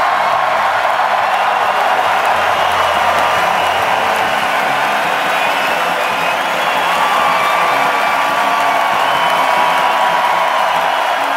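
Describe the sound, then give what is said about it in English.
A large crowd at Rogers Arena roars, cheers and applauds during a ceremony, giving ovations to Ryan Kessler and Trevor Linden, in a steady, loud wash of sound lasting the whole stretch, with a few whistles and whoops rising above it and no clear talking. “They, of course, got the biggest cheers, but if you use the old applause meter, you'll see that Ryan Kessler, who was getting booed after he got traded to Anaheim, and, of course, Trevor Linden, got big ovations as well.”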